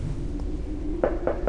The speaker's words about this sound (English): Ignatius's lair is within these doors. Two huge iron portals, easily a dozen feet high. I'm going to knock.